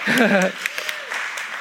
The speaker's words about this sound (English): yeah, you can clap. I like it when a few people clap. It'd be nice if everybody did, but not for me, for Jesus.